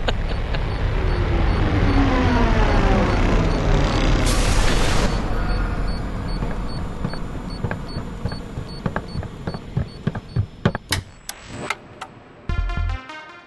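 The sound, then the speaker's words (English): A loud engine roars from an approaching airship built like an interceptor, with a huge engine bursting out the front; its pitch rises and falls, with a burst of whooshing noise, then the rumble fades and is followed by scattered clicks and knocks. “rock up in, like, an interceptor today with a huge engine bursting out the front”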